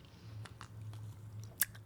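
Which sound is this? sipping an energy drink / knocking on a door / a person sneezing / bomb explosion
sipping an energy drink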